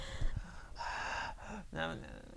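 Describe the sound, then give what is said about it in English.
A person imitates a teacher's heavy breathing as picked up by a wireless microphone over a classroom PA system: several loud, raspy breaths in and out, with a gasping, hissing edge and short pauses between them. “So, and the mic wouldn't pick up his voice, but it would pick up his breathing.”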